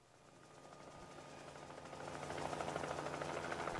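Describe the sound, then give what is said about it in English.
A helicopter in a video being played chops its rotor in a steady rapid pulse, the engine drone growing louder as it approaches, with no talking over it. “Oh, there's a helicopter.”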